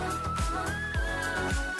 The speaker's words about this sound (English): Whistle note? Oh. Crazy.